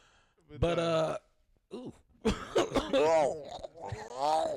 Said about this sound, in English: You just wanna clear your throat?